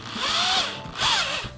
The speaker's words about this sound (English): And of course, the last step, we need to add the lawn chair. I've already got these 2 screws in. Now we're going to put the front 2 screws.